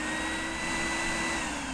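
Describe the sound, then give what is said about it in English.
A hoover vacuum cleaner runs steadily, a loud continuous motor whine with a faint high tone riding on top and no breaks. “That's one small hoover for man.”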